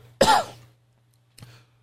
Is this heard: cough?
yes